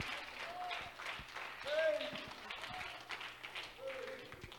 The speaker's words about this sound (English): Come on, stand to your feet. Clap your hands to the Lord and give Him a shout of praise. Hallelujah.